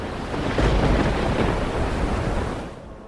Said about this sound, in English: The storm overtook the Cornet a few days into her voyage home. The combination of high winds and harsh waves tore the wheelhouse from the boat, pulling all the navigation and shelter into the sea.